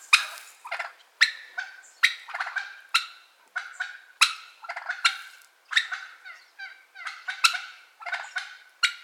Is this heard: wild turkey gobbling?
yes